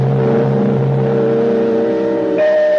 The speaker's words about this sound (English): Therefore, the right of an automobile engine to go on running must be protected, even if the driver died.